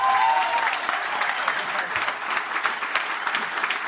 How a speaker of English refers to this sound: Give you a round of applause to all our guests today.